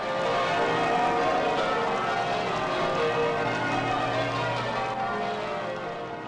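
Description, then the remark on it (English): Church bells peal loudly and continuously in sunshine at a royal wedding at St. Paul's Cathedral, their overlapping rings blending into a dense, jubilant wash that carries steadily throughout without any talking. “And so, out into sunshine and bells and wild delight, as a palpable wave of affection and pride wells out from the crowd.”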